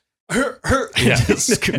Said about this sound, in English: You don't think I can cough, like, seal bark cough?